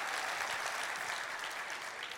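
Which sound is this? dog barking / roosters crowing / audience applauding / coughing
audience applauding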